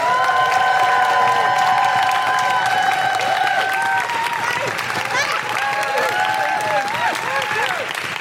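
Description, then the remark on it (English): Loud, continuous audience applause with cheering and high-pitched whoops and woohoos rising over the dense clapping throughout, as a Guilty Feminist show audience welcomes comedian Jordan Gray. “Please clap your hands, stamp your feet, and make incredible guilty feminist woohooing, welcoming noises to the incredible Jordan Gray!”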